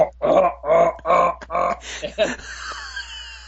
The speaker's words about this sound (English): So I was literally just blowing my grunt tube like a duck call. I mean, it was as loud and as fast and hot.